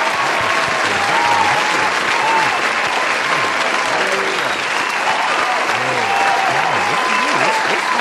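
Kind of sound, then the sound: crowd, clapping applause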